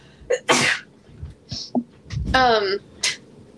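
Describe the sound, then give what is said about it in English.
One loud sneeze bursts out after a quick intake of breath, followed by a few small sniffs and a brief voiced exhale as the person recovers. “Hang on, I have to sneeze.”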